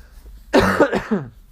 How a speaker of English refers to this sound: Excuse me, I'm gonna cough.